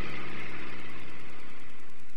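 An airplane engine drones steadily throughout as the plane is set down on a field of level snow, a dense, rumbling roar with a faint pulsing vibration underneath and no voices.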